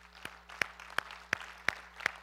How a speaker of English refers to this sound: Give these guys a hand.